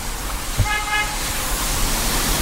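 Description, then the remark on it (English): A street sweeper rumbles steadily along a street, its broad whooshing drone filling the whole stretch, while a short car horn toot sounds early on. “You might be able to hear the street sweeper sound at this point.”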